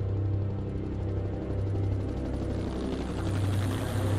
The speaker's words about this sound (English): I jumped on a helicopter and headed back in.